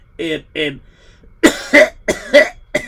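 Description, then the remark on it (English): A man clears his throat in a series of short, rough bursts, several quick raspy hacks and grunts in a loose rhythm after two brief voiced sounds. “No, just clearing my throat.”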